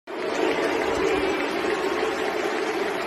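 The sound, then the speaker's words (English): A big crowd of England football fans, many cheering and some booing, before a friendly against Romania as the team took the knee, roars in a dense, steady wall of noise, cheers and boos blending together without pause for the full three seconds, with no single voice standing out. “The sound of England football fans, many cheering, some booing, before the recent friendly against Romania as the team took the knee.”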